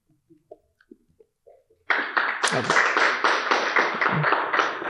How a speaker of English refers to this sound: Yeah, y'all don't have to clap.